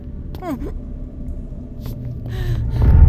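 A deep, steady rumble in an underground tunnel swells gradually, growing loudest and heaviest at the end, with a brief warbling sweep heard early on.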